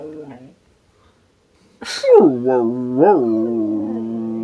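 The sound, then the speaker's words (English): A female dog cries and howls behind a door in a long, wavering whine that rises and falls, preceded by a brief sharp burst like a sneeze or yip after a short whimper and a pause. “Stop. She's crying.”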